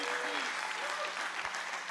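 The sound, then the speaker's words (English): An audience applauding, a dense, steady wash of many hands clapping at once, with a few voices faintly calling out beneath it. “Clap today if you're grateful for a God that cares about every piece of your life.”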